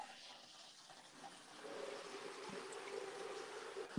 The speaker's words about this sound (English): It seems like, you know, your water is not making this podcast very smooth. Like, why are you taking a shower right now?